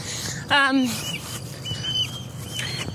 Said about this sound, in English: Some bird thinks there's shame there. I'm not listening to you, bird.